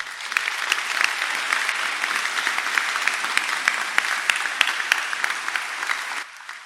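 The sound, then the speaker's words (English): An audience claps for God during a sermon, clapping steadily for several seconds. It is a dense, bright patter of many hands with a few sharper individual claps standing out, before the applause fades away. “Can you clap for God again?”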